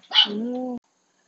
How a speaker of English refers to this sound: Stop. You're just barking at the cats. And my dog's interrupted me, so there you go.